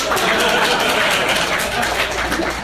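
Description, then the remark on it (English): An audience claps in a dense, steady patter for a couple of seconds, applauding to show who has never watched the film Hancock, with murmured voices mixed into the applause and no single clap standing out. “I know lots of you have probably seen it, but let's find out where are the people who have never watched Hancock. By applause.”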